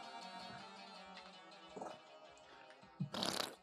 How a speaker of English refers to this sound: Like a wet fart.